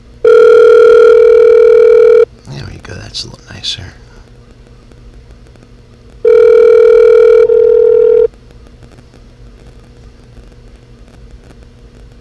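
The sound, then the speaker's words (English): A telephone ringback tone sounds twice as an outgoing call to a man's regular phone rings, each loud, steady buzz lasting about two seconds with a long pause between, and a person briefly speaks in the gap. “But I'm going to try to call him one more time on his regular phone”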